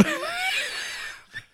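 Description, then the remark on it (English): A single harsh cough bursts out and rasps for about a second, followed by a short, softer catch of breath. “That was a literal, like, turn your head and cough kind of cough.”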